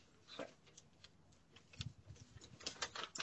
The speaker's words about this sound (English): This woman does not have a business card. She's tearing out a piece of paper.